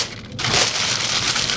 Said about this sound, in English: Now that he has carefully removed it, Data rips the paper in half.